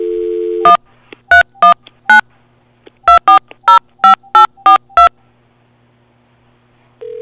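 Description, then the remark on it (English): A steady dial tone gives way to about ten crisp telephone keypad beeps in two quick runs, then a pause before a ringback tone begins right at the end. No one speaks. “Got it ringing.”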